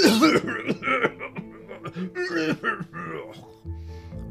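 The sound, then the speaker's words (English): A king coughs and clears his throat in a rapid, rough string of bursts lasting several seconds, fairly loud, with no words spoken. “Suddenly, the king was seized by a coughing fit.”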